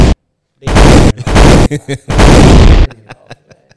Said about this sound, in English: Where my gunshots, bro?